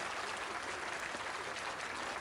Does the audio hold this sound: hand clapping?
yes